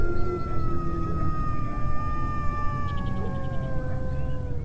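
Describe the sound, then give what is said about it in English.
Several coyotes howl and yip together, their wavering tones sliding over a steady rush of Rio Grande river water, with a faint siren wail blending into the chorus; recorded on the riverbank north of Central Avenue Bridge, with vehicles and birds also present. “Okay, if you guessed hearing the sounds of the river, sirens, vehicles, birds, and coyotes, then you got it right.”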